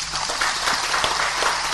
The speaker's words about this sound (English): Hundreds of fans applaud as Cameroon's football legend Samuel Eto'o Fils announces that all local games, including league matches, will henceforth be broadcast live on local radio and TV stations.